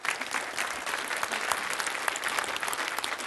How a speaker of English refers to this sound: I think we should all give Brad Wall right now a round of applause for standing up for us.